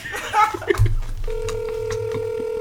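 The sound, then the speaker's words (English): Brief voices and a snicker, then a steady electronic ringback tone from a phone on an outgoing call, droning continuously in the background for over a second. “He probably not gonna answer the phone, but we gonna try anyway.”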